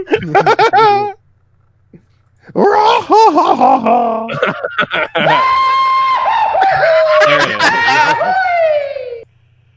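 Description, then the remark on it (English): A person vocally imitates a Goofy cartoon yell and the Wilhelm scream, with loud, wavering, pitch-bending bursts separated by short pauses and ending in a long sustained wail. “Goofy. Wilhelm scream. Goofy.”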